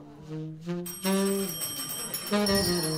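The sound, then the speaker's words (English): A bell, rung by an audience member at a live talk show, rings out loudly several times in quick succession, each strike leaving a bright, lingering shimmer that overlaps the next, with a faint murmur of voices underneath. “So if you're in the audience tonight and you hear BS, whether it's jargon or cliche, ring the bell.”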